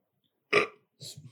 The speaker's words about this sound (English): That was unprofessional. Sorry. Nigga burping and shit.